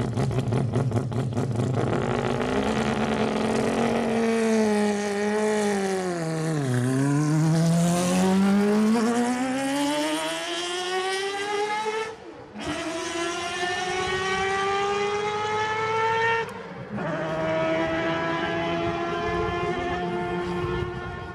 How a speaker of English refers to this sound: And if you can't hear it on here, if I can't find one, then YouTube it and just listen to the sound that flipping thing made. It was such an amazing sound for a race car to make.